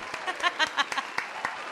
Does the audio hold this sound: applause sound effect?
yes